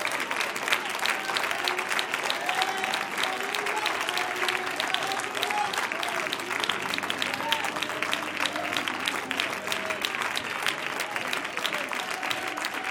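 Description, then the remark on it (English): A large group claps their hands to the Lord continuously in a dense, steady wash of applause, with scattered voices and faint shouts mixed in throughout. “I want you to clap your hands to the Lord.”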